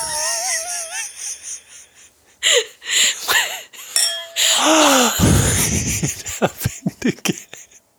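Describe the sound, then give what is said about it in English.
A doorbell chime rings out because someone is at the door, with clear, sustained tones amid a busy jumble of other sounds, including sliding, warbling voices and sharp clicks and knocks. “That is the chime that rings when the door has a person.”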